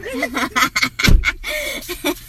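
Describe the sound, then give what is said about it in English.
A garage door shuts with a single heavy thud about midway through, its low rumble briefly cutting through people chattering and laughing. “I'm like, can they close their garage? Are they in the garage? No. So I'm about to close it.”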